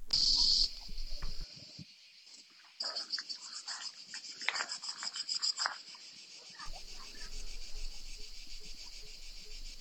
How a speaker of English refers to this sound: You know, so you can hear these, you know, this like these hordes of cicadas in the different trees all around the house that we're staying in there.